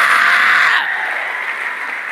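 An audience claps together in a dense, loud burst of applause that drops after under a second into softer, steady clapping continuing to the end.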